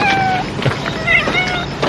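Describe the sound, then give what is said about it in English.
A voice imitates a cat, meowing several times in quick succession with high, sliding, whiny tones that overlap one another, loud against a faint background hiss. “So it's this. Meow.”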